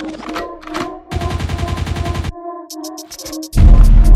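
A loud burst of rapid-fire gunshots rattles off in a quick rhythmic volley, set against a music bed, with more heavy blasts hitting near the end.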